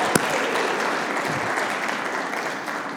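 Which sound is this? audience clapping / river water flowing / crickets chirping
audience clapping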